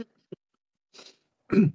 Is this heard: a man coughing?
yes